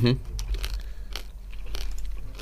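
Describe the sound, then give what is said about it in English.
Crisp crunching of hard-shelled M&M chocolate candies with a crunchy honeycomb centre being chewed: several sharp crunches at uneven intervals, with a brief vocal sound at the very start. “Let me know what you're thinking of the crunchy honeycomb centre of the new M&Ms.”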